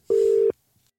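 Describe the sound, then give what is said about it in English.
A single steady telephone ringing tone, a loud, even electronic hum lasting under half a second, then quiet with only a faint bit of background noise. “I think it just rings.”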